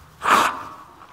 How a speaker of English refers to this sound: Hang on, I'm going to blow my nose.